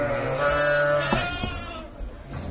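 A sheep bleats loudly in a long, wavering cry, followed by fainter bleats from a flock of dairy sheep kept for milk, against steady outdoor farm noise.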